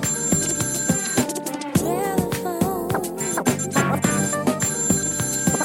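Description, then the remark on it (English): A telephone rings with a busy, melodic ringtone, loud, repeating in steady rhythmic bursts for several seconds with no one talking. “Phone is ringing.”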